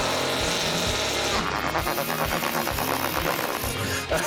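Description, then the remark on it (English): A long, loud fart noise made by squeezing air through the hands, a buzzy, sputtering rasp that wavers and pulses for about four seconds with no talking over it. “farting like that with my hands actually relieves stress.”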